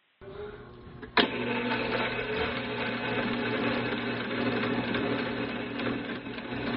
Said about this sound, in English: The second sound is a sewer machine.